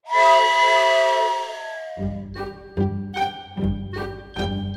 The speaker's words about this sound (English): That's the sound of the train whistle. That means it's time to play Walt Disney World Insider Free Association.